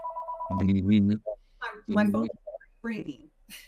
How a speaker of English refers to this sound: The phone's ringing. You see, guys, how that works?